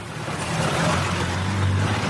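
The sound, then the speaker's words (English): Slow street traffic inches past a street corner in Bangladesh, a steady, fairly loud engine drone with a low hum and broad road noise, no distinct horn or bell standing out, and no voices. “It's just the way the traffic is here, slowly inching by, horns and bells sounding.”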